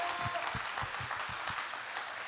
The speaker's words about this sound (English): A little amen or a clap or something.